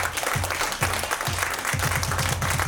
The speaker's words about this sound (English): Can we give a big round of applause to the panelists that came in?